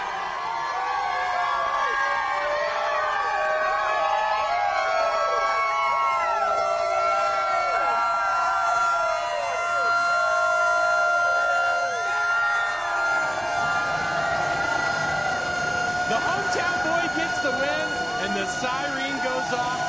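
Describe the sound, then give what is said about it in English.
A loud siren at the pool room in Dawsonville wails continuously, holding steady sustained tones, while a large crowd cheers and shouts underneath throughout. “Let's hit that siren!”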